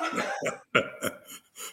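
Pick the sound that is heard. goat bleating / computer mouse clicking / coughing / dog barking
coughing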